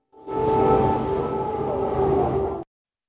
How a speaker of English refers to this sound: We understand that siren was the all-clear signal.